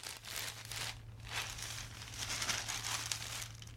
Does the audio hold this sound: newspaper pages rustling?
yes